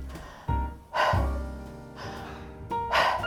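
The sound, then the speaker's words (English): A person pants loudly in quick, breathy huffs, imitating a dog running, with several sharp exhalations in an uneven rhythm and no talking. “Then, like a doggy, we imagine that we run a lot, and we are breathing.”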